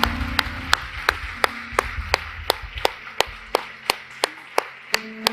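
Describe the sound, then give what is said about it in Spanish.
A church audience applauds its group and department leaders to honor God, with steady, rhythmic claps, sharp beats landing evenly about three times a second over a low musical hum, with no talking. “¿Podemos darle un aplauso a estas personas y honrar a Dios honrándoles a ellos?”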